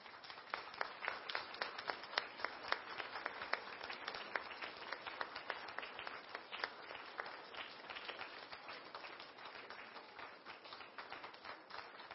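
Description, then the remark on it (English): An audience of the Church of God International in Burlington clapping together for the children, a dense, steady patter of applause that carries on for about twelve seconds without letting up, with no voices on top. “Brethren, can you get up and give them another round of applause?”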